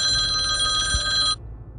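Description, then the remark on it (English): A loud, shrill cell phone ring from an incoming call, on a phone used while driving, with bright sustained tones for over a second, then cuts off abruptly, leaving a low background hum. “My apologies for the loud ringing sound, if you're hearing that loud ringing sound.”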